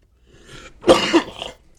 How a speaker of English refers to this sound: Excuse me, y'all. Yeah. I've been getting over a little sickness this past weekend, but excuse me for any coughs or whatever you might hear.